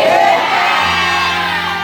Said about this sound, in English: When I was prophesying, you were shouting. So this one, you shout.